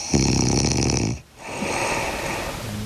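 A woman snores loudly: one long, rumbling inhaled snore with a rattling buzz, a brief pause, then a softer, breathier exhale.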